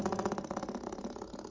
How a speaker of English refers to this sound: Okay, that's a doorstop. Sure. That's like somebody going... Or a car, but we'll do the doorstop. Yeah, doorstop makes more sense, because it's like the springy one.